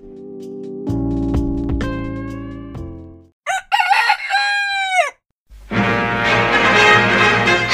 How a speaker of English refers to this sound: But there is one criticism I have, and it's the intro. It is called … because it's a rooster crowing really loudly, and it's this.